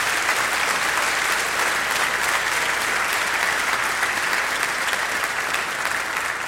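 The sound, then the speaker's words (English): A crowd claps steadily, dense overlapping applause that stays loud and even throughout, an audience giving a sustained ovation to thank the performers, with no voices standing out. “First, though, let's give these guys a big round of applause.”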